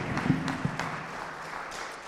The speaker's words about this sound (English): And as they are so coming, would you please give these brave folks a round of applause and thanks for their witness tonight?